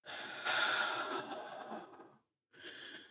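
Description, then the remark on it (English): A long, slow, controlled paced breath drawn steadily for about two seconds, a brief pause, then the start of another deliberate breath, clear with no talking. “So you can control how you're breathing at any time.”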